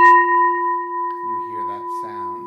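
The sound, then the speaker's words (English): A single bell is struck once and rings on with a steady, sustained hum that barely fades. A voice starts talking quietly underneath as the tone lingers. “You have a feeling about this bell. Most people experience the bell as pleasant.”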